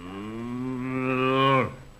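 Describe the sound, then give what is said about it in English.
A single long cow moo, low and droning, swelling steadily louder before cutting off abruptly after about a second and a half, as someone prepares to milk the cow. Clear with no talking. “See, that cow looks like the rooster.”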